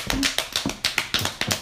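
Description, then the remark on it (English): Hands slapping thighs in quick, uneven bursts as a classroom makes a pretend rainstorm, about nine dull smacks in under two seconds, blurred together as if several people are slapping at once, with no talking. “Slap your thighs.”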